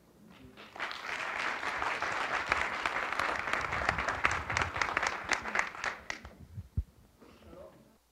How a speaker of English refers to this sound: And I just would like you to give a real round of applause to them